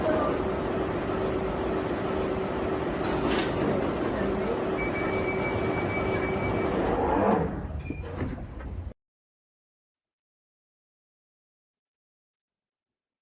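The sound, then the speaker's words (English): A steady underground train rumble at a station, with a droning electrical hum, fills the first seven seconds, then a door slides and the noise stops abruptly into silence. “Mind the gap between the train and the platform. Please stand clear of the discussion doors.”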